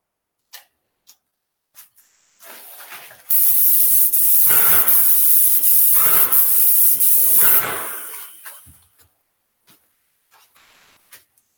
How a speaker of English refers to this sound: So we'll spray another half coat.